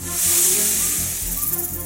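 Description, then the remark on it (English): Snakes let loose in an animal tent hiss in a loud, steady, breathy stream that runs for about two seconds without a break, over a low droning hum. “Phew, it's just snakes.”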